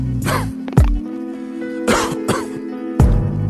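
A close, fairly loud fit of coughing: about five harsh, throaty bursts in uneven clusters, with short gaps between them and a steady low hum underneath. No one speaks.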